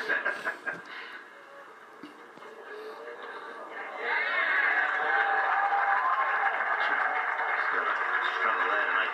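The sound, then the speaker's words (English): A golf crowd on the course breaks into cheering and applause partway through, probably as the scoreboard is changed to show McIlroy's eagle, a steady wash of clapping and voices that swells and holds to the end, preceded by indistinct talk. “A little bit of a round of applause there.”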